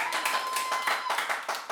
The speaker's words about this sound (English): Yeah, there's some applause.